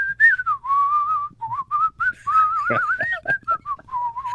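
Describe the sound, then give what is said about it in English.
A person in a studio whistles a random, tuneless line that is not any particular song, the pitch sliding up and down in short phrases with brief pauses between them, loud and clear with no talking. “Yeah, that wasn't any particular song, but just some sort of random whistling there.”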